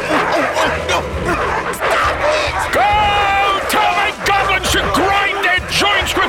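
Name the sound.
dogs barking and yipping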